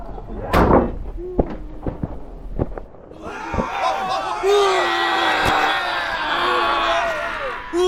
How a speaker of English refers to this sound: The enraged men grabbed a huge log and rammed it into Lot's front door. The door shook with each hit